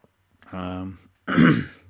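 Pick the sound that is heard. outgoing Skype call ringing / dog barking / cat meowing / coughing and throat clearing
coughing and throat clearing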